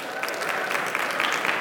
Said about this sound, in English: All right, by show of hands, who is graduating or expecting to graduate this spring? Okay, you can cheer for that. You're almost there.